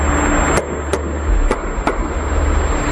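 Underwater knocking picked up on sonar during the search for the missing Titan submersible: four sharp, evenly loud bangs arriving in two quick pairs over a constant hiss and low rumble, with a faint steady high tone.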